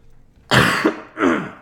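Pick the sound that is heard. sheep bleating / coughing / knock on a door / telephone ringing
coughing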